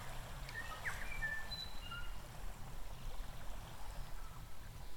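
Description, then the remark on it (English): A few brief, high bird whistles and chirps sound in the first half, fairly faint and scattered, over a steady rushing wash of water or wind near a lakeshore. “You can hear birds again.”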